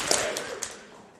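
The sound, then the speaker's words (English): A group of people clap their hands together once on the count of three to end a huddle, in a soft, slightly ragged burst, followed by a couple of faint stray claps as the sound dies away. “And clap your hands on it too.”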